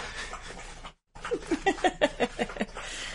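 A dog laps water in quick, steady rhythmic slurps, fairly clear, with about a dozen wet laps after a brief pause.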